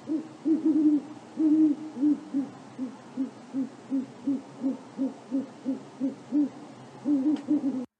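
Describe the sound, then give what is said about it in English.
An owl hoots over and over in a clear, steady rhythm, a long run of evenly spaced low calls with a few longer, warbling ones at the start and end. No one speaks. “That's the noisy owl.”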